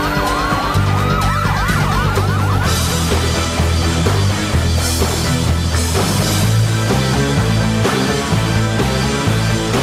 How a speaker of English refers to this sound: Police siren, still there. It's still there.